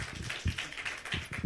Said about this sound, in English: So give yourselves a hand clap for that.